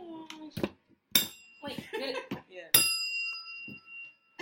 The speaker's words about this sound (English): Yes, you can hear it too. Okay. That was a tequila bell, actually, y'all. They guys up here drinking this.